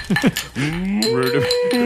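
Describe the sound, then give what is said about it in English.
A made-up horse-cow creature calls: two quick squealing whinny-like bursts, then a long, loud, wavering moo that swells and holds, with no talking. “It's horse cow.”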